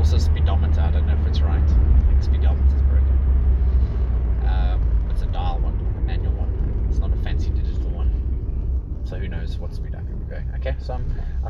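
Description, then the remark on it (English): Steady, loud low rumble of a car moving at about 89 km/h in an 80 km/h zone, heard from inside, with constant road and engine drone and a person talking intermittently over it. “So here we are, sitting in the traffic.”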